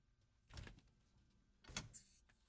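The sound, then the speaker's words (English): A door shuts with two fairly solid clunks about a second apart, the second followed by a brief high-pitched mechanical whir. No one speaks. “Don't you slam that door! I didn't slam it.”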